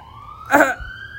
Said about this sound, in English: The sweet sounds of Groveport. Sirens rolling down Main Street.